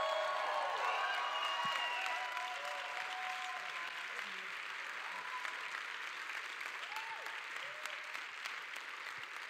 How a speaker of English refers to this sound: But I need you to do me a favor, okay? A wonderful friend of this house, can you please this morning, can you stand to your feet and clap super loud and shout a little bit